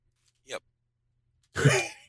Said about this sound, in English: And huffing and puffing on this mic. That's not me. Oh. This is somebody breathing hard.